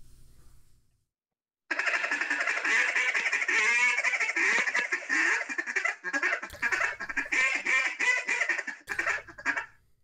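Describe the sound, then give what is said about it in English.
A rapid, continuous run of raspy duck-like feed-call chatter blown on a duck call, starting after a short pause and rolling on loud for about eight seconds with brief breaks. “Can you run your feed call?”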